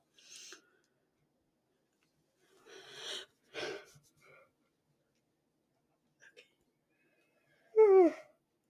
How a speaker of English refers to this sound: Yeah. Okay, sorry. I had to yawn.